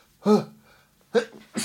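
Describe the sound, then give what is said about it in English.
Abrupt sneezes from one person: a voiced gasp that bursts into a sharp, breathy explosion, followed by two more quick bursts after short pauses. There is no talking. “excuse me, I'm going to sneeze now.”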